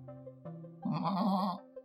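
A goat bleats loudly, a single wavering cry lasting about a second, preceded by a lower, softer murmur and ending with a brief trailing sound.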